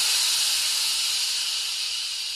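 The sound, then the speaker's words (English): Steady, loud hiss of steam escaping from an Instant Pot steaming a dozen dumplings, a continuous bright rushing noise that holds evenly for the whole moment with no voices over it. “Well, then check the Instapot. I have a dozen dumplings in there steaming right now.”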